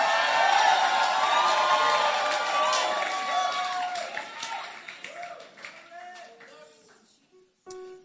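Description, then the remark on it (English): An audience screams and cheers in a dense wash of high-pitched shouts and whoops, loud at first and then slowly thinning out, with a few scattered voices and claps near the end. “Are you just screaming because you just feel like screaming, or truly you are free from pain?”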